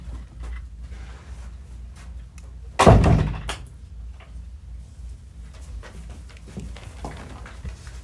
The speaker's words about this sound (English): Let me just shut this door.